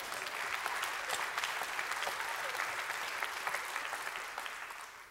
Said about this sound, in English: That's a weak applause, some of you. Come on now.